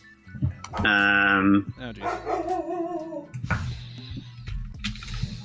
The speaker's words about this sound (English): Yeah, this time my wife got home, so now dog's barking.